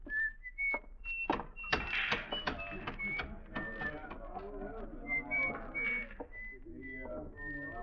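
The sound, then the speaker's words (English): A man whistles a bright, high tune in short, steady notes while walking down the shady side of a street on a sunny day, handling the oddments in his pocket, with scattered clicks, clatter and rustling beneath it and no talking. “On a sunny day, you could see him walking down the shady side of the street, whistling and handling the oddments in his little pocket.”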